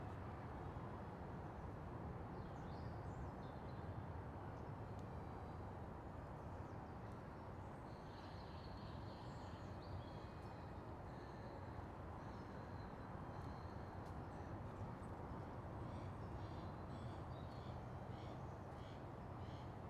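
A crow caws faintly, several harsh calls in loose succession on a balmy morning after Storm Isla, half-buried under a steady outdoor rumble of wind or traffic.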